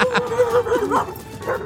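An overprotective Rottweiler barks and yips in quick succession, several short, fairly loud calls with whiny, sliding tones, without any talking over them.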